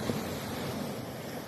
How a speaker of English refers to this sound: Waves were crashing on the shoreline of Lake Superior as I drove toward the Canadian border.